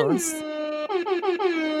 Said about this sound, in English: So hip-hop air horns to you.